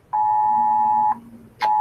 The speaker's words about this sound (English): So, what the hell? What is that? Red Dawn is happening. That's an amber. Yeah, exactly. That's an amber alert.